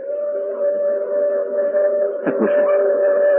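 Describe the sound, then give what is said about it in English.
A train whistle blows one long, unbroken note, steady and mid-pitched with a reedy, chord-like tone, holding loud throughout with a brief rough wobble partway through. No one speaks. “Where's that whistle from? Two trains due now.”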